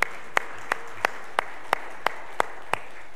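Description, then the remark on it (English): Audience applause for someone's birthday in the form of steady, rhythmic clapping: about ten crisp, evenly spaced claps in unison over three seconds, moderately loud, with no talking. “So can we give her a clap and a praise for her birthday?”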